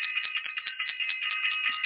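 A bell is rung for everyone in an astrology class: it rings continuously for two seconds, struck in quick repeated pulses that blend into a bright, high, shimmering tone. It is steady and fairly loud, with no voices.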